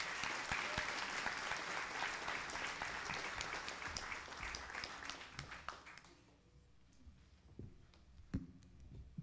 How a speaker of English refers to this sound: Let's have another round of applause for all our volunteers.